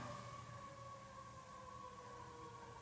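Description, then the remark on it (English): An emergency vehicle siren sounds as it passes by, a sustained, fairly steady wail whose pitch drifts slightly lower as it passes, over a low background rumble with no one speaking. “Every time sirens go by, I think it's worth us pausing to pray silently for those it's going to aid.”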